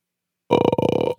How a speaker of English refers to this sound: Is that a belch?